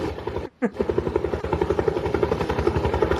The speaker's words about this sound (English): Ooh, it's a helicopter. Is it Airwolf? Yes.